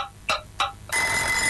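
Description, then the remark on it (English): A quiz bell sounds two quick metallic dings, then breaks into a loud, continuous electric ringing that holds steady to the end, with no voices. “I think disqualified if you get it on the bell, unfortunately.”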